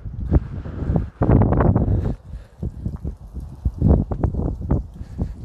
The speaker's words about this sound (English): It's getting a little too windy.